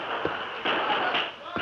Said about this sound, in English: More gunfire. Townsmen are firing at us.